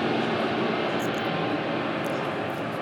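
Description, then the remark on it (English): A small propeller plane drones steadily overhead, a broad continuous engine rumble that stays loud and even throughout, with no voices. “Little airplane going overhead.”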